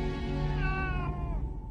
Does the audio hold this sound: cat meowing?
yes